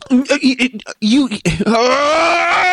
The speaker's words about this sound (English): Hey, at least you were off mic when you yelled.